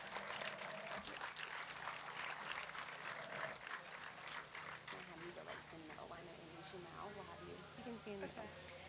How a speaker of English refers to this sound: So let's give these 10 a round of applause as they exit the stage.